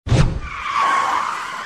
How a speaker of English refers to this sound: Whoa, what's going on? A car just drove into our studio.